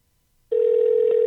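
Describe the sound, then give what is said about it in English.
After half a second of silence, a loud, steady mid-pitched phone tone starts and holds unbroken to the end, the ringing of an outgoing call. No one speaks. “All right, I'm calling him right now.”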